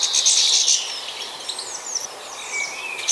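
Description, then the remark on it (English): Small birds squabble with each other in a rapid flurry of harsh, buzzy zizzing calls and thin chirps, continuous, with no talking. “They generally defer to other birds at the feeder, but will squabble with each other, making angry zizzing noises.”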